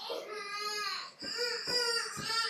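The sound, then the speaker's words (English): A young boy having a meltdown cries loudly and continuously, with high-pitched wailing that rises and falls across several sobbing breaths, no other voices heard. “Am I screaming in my background too? My boy is melting.”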